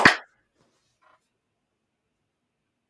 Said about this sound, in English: Let's do a clap on three. One, two, three.